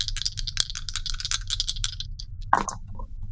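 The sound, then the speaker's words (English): Dice rattle rapidly for about two seconds, a busy clatter of small hard clicks, followed by a brief pause and one sharper knock as they settle on a roll of 9. No one speaks. “It's a 9 on a dice plus 2 is an 11.”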